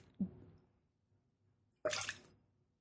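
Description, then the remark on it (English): A short soft gulp, then after a pause a sudden hissing splatter as drinking water is spat out of a mouth into another person's glass, fairly loud, lasting about half a second. “I took a drink of my water and spit it into your glass.”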